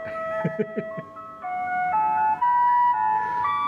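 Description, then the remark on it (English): A toy Advent gramophone shaped like a record player, with 24 festive tunes on 24 small discs, plays disc number one: a thin, tinny electronic melody of sustained bright notes stepping gradually upward, with a few soft rhythmic bumps near the start. “This is a festive Advent gramophone with 24 festive tunes, and it's in the shape of an actual record player.”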